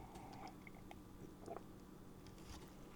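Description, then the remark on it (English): Someone takes a quick sip of a drink, with a few soft slurps, mouth clicks and a faint swallow over a quiet background, with no talking. “So let me take a little sip right quick and we'll get into it.”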